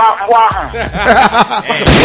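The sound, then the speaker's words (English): A person vocally imitates gunshots, firing off a quick string of loud, punchy bursts with a buzzy, voiced edge, ending in one harsh, noisy blast. “We got gunshots. Wow. Sound effects.”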